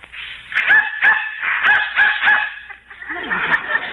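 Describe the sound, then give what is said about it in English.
A dog barks repeatedly in short, sharp bursts, about five or six yaps in quick succession, fairly loud, with no one speaking, responding to a dog whistle that cannot be heard by humans. “Dog heard it, but I didn't.”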